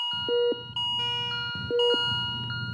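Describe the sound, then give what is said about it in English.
Electronic alarm tones beep in a repeating pattern, pairs of steady pitched pulses with sustained high harmonics, clear and moderately loud over a low mechanical hum, like a hospital monitor alarm. “In a study at Johns Hopkins Hospital, nearly 60,000 alarms were recorded over 12 days.”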